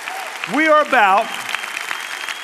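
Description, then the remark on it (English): A church audience at Fellowship applauds the people baptized there in a dense, steady clatter of clapping, with a loud rising whoop or two of cheering riding over it early on. “Let's give them a crazy round of applause because that's what we're about.”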